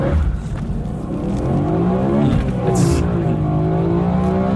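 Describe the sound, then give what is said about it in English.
A high-revving V8 engine roars continuously, heard from inside the car, its pitch climbing and dipping as the throttle works, loud throughout with no one speaking. “I definitely think it's high revving V8.”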